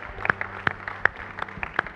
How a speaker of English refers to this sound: If you believe with that prayer and thankful for the word today, would you give the Lord a hand clap today? We love You, Lord.